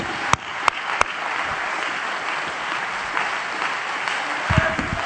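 An audience claps their hands: three sharp, loud claps ring out first, then a dense, steady wash of crowd applause carries on for several seconds without voices.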